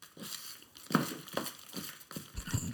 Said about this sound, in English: This is a lot of rustling on this bit.